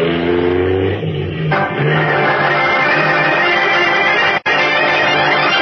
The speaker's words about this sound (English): Pressing the accelerator down to the floor, Batman sends his powerful car hurtling back over the twisting road in pursuit of Big George Latimer.